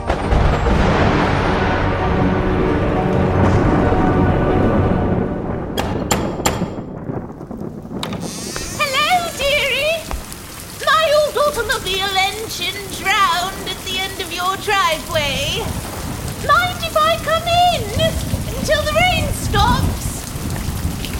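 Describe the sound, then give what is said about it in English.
Heavy rain roars steadily beneath deep rumbles of thunder in a severe nighttime thunderstorm, and midway through high, wavering voice-like tones rise and fall over the downpour. “But on the night of Bastian's third birthday, during the worst thunderstorm in over 100 years, everything changed.”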